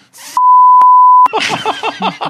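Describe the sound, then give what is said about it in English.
A loud, steady one-second censor beep cuts in sharply after a brief burst of noise, then stops abruptly as someone resumes talking. “Seriously, I'm going to have to mute that. Beep.”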